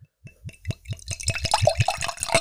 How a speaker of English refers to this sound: Okay, you pour some out. Okay, so this is us pouring out some sea buckthorn.